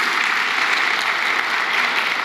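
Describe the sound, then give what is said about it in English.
Steady audience applause fills the whole stretch, a dense, even wash of many hands clapping at once with no pauses and no voices rising above it. “Yeah, you can go ahead and give him a hand clap.”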